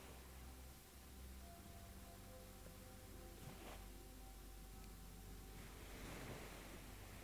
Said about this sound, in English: A soft ocean breeze cools the air, causing the foliage to gently sway, casting shadows over the pale sand.